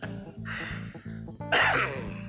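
A person coughs, two rough, throaty bursts with a brief pause between them and a harsher, louder second cough. No one speaks.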